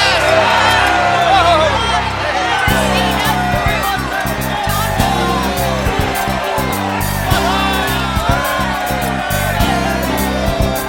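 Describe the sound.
A large crowd shouts and cheers continuously at the walls of Jericho, many voices whooping and yelling at once in a loud, dense roar that stays steady throughout.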